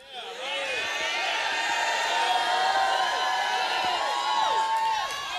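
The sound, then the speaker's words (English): An audience shouts together in a sustained, loud roar of many overlapping voices, with rising and falling cries and whoops layered over one another for several seconds. “Listen, I was at a concert last week, and they sounded a whole lot better than y'all did.”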